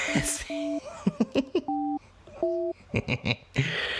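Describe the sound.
Three short, steady dual-pitched phone keypad beeps sound as a call is dialed, spaced unevenly, with brief bursts of voices and laughter in between.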